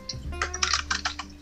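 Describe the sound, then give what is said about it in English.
Computer keyboard keys tapping in a quick, irregular burst of about a dozen clicks as someone types to search for things, with a faint steady hum underneath and no voices. “And that is the keys of OP tapping away, trying to search things.”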